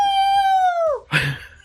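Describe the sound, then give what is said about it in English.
A person imitates a dog's howl, marking the year of the dog in Overwatch, with a long, steady high-pitched note that slides downward at the end, followed by a short, rougher yelp-like burst. “I thought we were going to like do a dog thing, but...”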